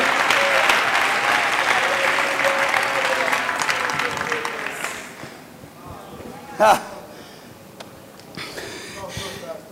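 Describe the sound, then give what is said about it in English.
An audience claps their hands to the Lord, loud, dense, sustained clapping that gradually thins and fades, leaving scattered claps and a sharp knock near the end. “Let's everybody clap our hands to the Lord, will you?”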